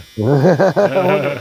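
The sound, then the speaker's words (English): A clothes dryer buzzer sounds, a loud, buzzy tone that wavers up and down in pitch for about a second and a half with no talking over it. “All right, on, and there's my dryer.”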